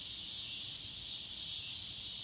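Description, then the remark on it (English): Summer cicadas in the South buzz in a dense, unbroken high-pitched drone with a faint pulsing shimmer, loud and steady throughout, with no voices present. “And the same with cicadas, which negative. Are very much a part of our summer life Southern here.”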